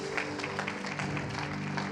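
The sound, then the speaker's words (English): A church audience at a Sunday morning service applauds its praise team, a dense, steady patter of many hands clapping at even loudness throughout, with a faint low sustained hum beneath it. “And can we give a round of applause for our praise team this morning?”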